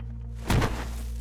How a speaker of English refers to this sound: You see as now one of the goons has slammed his body against the door, trying to break it open, but slipping on the oil.